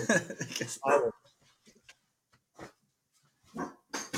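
A dog named Levi barks at the door in a quick cluster of loud, sharp barks, goes mostly quiet with a few faint sounds, then lets out a couple more barks near the end.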